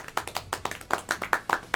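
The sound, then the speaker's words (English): A short round of applause for the winner of a Player of the Month award: a quick, slightly uneven patter of about a dozen sharp hand claps at moderate volume, with no voices over it. “Yeah, round of applause.”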